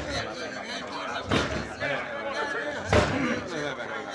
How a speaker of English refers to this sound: Bust his door down, boy!